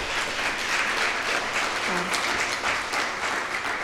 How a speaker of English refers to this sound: So thank you, SMR, so much for being here tonight. A big clap.